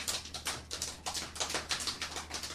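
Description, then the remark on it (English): Hooves of bandits' horses approaching across vast plains clatter in a steady, quick clip-clop rhythm, a run of sharp, bright knocks repeating several times a second at moderate volume, with no voices. “Horses. Yes, indeed. It does sound like...”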